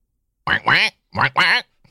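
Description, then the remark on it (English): A voice imitates a bedside phone ringing in a squawky cartoon-duck style, two paired bursts of nasal, quacking syllables, loud, with a short pause between them. “Let's just do the ring.”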